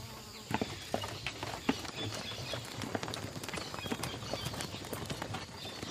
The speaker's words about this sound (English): God Commander of the Truth Seekers, Morris, enters the carriage. His guardsmen hop on their separate horses and guide the carriage through the city.